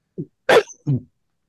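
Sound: sneeze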